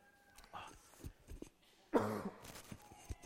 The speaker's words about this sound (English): I thought I was rid of this cough that's been with me for several weeks, but the smoke has stirred it up again. The smoke from the bushfire. Not my smoking.